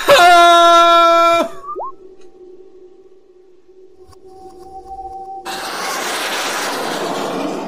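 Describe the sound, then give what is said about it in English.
A spaceship thruster sound effect as thruster power is increased: a loud, buzzy synthetic tone cuts off into a low, steady hum, then a broad hissing roar surges in and holds steady to the end. No one speaks. “Sorry, I had to add in sound effects for that.”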